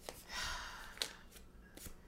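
Papery rustling and crinkling as paper slips bearing conversation topics are rummaged through and pulled from a bag, four topics in all, with a few sharper crisp rustles standing out, fairly quiet, with no talking.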